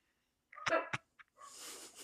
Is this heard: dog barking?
yes